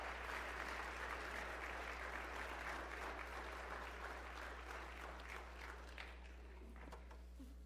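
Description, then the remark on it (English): An audience claps steadily for several seconds for volunteers, a dense, even patter of many hands that thins out and fades toward the end, with a low steady hum underneath. “Can we give a round of applause to our volunteers?”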